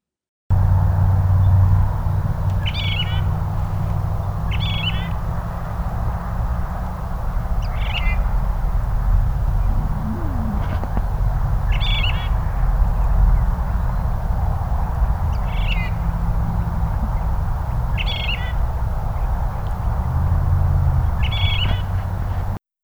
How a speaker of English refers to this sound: The Phainopepla does have its own song and calls, but when they are pursued by a predator or handled by humans, they may mimic the calls of other birds.